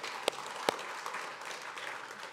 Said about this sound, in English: We can clap a little bit.